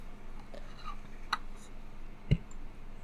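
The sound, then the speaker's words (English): Two sharp, quiet keyboard clicks about a second apart, made while typing a search into Google, stand out against a faint, steady hush, with no one talking. “Okay, I'm typing this in to Google.”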